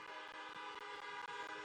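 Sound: car horns honking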